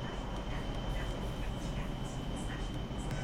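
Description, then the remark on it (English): A train engine in a train simulator game rumbles low and steady as the train gathers speed, with faint rhythmic chuffs repeating over it and a thin constant whine on top; no one speaks. “That's your train basically gathering speed.”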